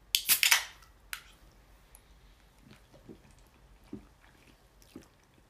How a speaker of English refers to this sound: And anyway, so I'd like to open this can of alcoholic drink, and cheers.